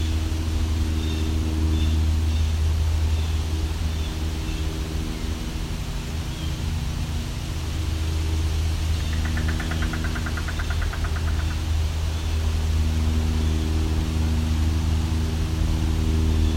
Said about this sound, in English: Unfortunately, a lot of noise here. Just had a train go by, now there's an airplane.